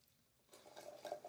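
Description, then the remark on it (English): Wine from a 2021-vintage bottle, the winery's most representative wine, pours into a glass for a tasting, a soft gurgling splash with a faint rising ring that starts after a brief silence and continues steadily to the end. Nobody speaks. “So let okay. me pour it here.”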